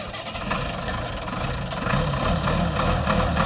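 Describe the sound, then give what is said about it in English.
The engine of a 1973 Allis-Chalmers 200 tractor in Kansas, with just over 1600 original hours, idles steadily, a loud, continuous low rumble with a faint rise in intensity toward the end and no voices. “This week, we're off to Kansas again to check out an Alice Chalmers 200.”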